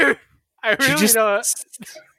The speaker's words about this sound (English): What was wrong with it? You just throw up? Cause it sounded like you just threw up. Okay, a little bit.